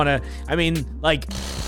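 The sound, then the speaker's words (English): Three loud revving bursts of buzzy, rising-and-falling drone from a cheaply made toy chainsaw, ending in a steady low hum. “I can sit here and rip my chainsaw and turkey carver all day long, but it's just a noise to you in audio.”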